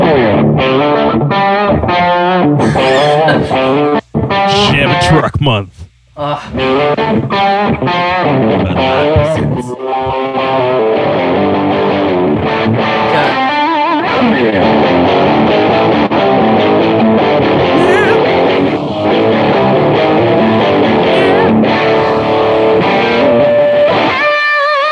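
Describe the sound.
A gritty, overdriven electric guitar in drop D tuning plays choppy chugging chords, breaks off briefly, then returns with thick sustained chords and busier riffing, loud and steady throughout with no talking.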